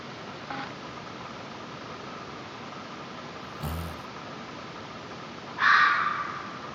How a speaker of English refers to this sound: There's a lot of animals that sound like crying children and women in the woods. Take a listen, kids. This is a fox. Let's see how it sounds.